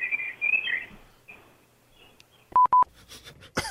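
Birds chirp and twitter at moderate volume for about a second in the background of a phone call, over a thin, phone-line quality background, then a short run of telephone keypad beeps follows.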